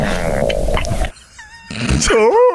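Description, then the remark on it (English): A loud, drawn-out stomach growl with squealing, wavering tones that bend up and down in pitch, broken by a brief quieter gap before a final warbling gurgle. “Then what is that? That's bubble guts.”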